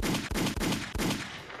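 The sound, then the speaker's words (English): A loud, dense burst of gunshot sound effects, several sharp cracks in quick succession over a continuous roar of gunfire, with no voices. “And gunshots, all that.”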